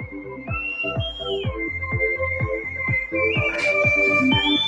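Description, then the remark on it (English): A woman whistles outdoors in the mountains, in a video called Screaming Cowboy: a long, high, steady note that slides up and down in pitch over a fast, regular pulsing thump underneath. No one speaks. “Oh, she's whistling. She's whistling in the mountains.”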